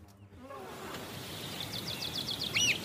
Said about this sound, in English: It's like a whole symphony out there of bird song, bird call. I find birdsong to be the most abundant celebration of whatever that life energy is.